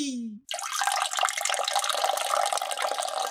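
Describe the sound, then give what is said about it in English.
A brief descending tonal blip gives way to a steady, hissing stream of liquid splashing continuously for about three seconds, a urinating sound effect for a little bird relieving himself, with no voices. “He quickly relieved himself and smiled with a ton of glee.”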